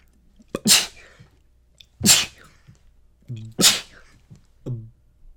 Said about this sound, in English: Bless you.